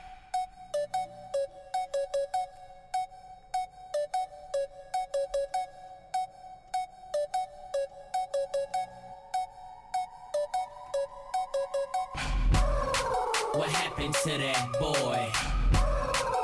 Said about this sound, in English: So is it just instrumental or do we hear lyrics also? We put in like little vocal samples and stuff, yeah.